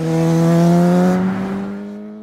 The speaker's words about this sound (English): She cinches up the neck strap, slides on her gloves, clicks the bike into gear, and launches onto the winding two-lane road. There's just freedom behind it.